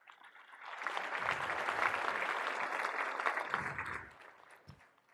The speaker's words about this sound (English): Next round of applause for that.